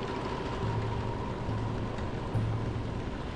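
Steady rain patters against glass in a dense, even wash of droplets, with a low, faint hum droning underneath. No voices are heard.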